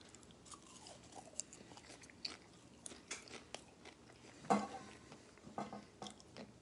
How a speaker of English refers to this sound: And you get this nice popcorn, you know, the popcorn flavor comes through and they're nice and crunchy and chewy and, you know, fluffy.